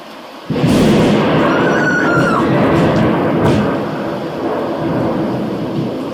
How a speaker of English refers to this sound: And she recorded it with her phone, and there's this lightning strike, and it's so loud, and you can hear them screaming.